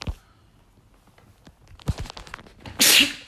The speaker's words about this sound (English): I'm about to sneeze.